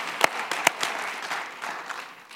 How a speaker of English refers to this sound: Yeah, we can give him a clap for that.